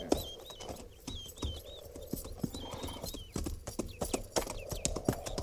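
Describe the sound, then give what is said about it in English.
Several horses' hooves clip-clop in a loose, uneven rhythm, the sharp clopping continuing throughout over a low rumbling background; horses of a cavalry company stopping by a creek to be watered. “Not after we water the horses.”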